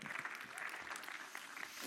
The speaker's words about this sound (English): So, yeah, some applause for that.